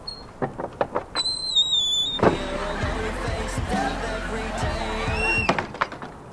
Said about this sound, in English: She went into the front door. She can't do that, can she? And was that a party I heard?